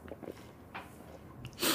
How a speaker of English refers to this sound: Good big slurp right there.